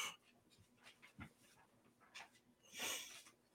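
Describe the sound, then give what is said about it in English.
A large 75-pound dog crunches and chews, with irregular crisp bursts and soft breathing between bites, quiet overall with one louder crunch near the end. “Sitting there listening to a dog crunch, crunch, crunch, crunch.”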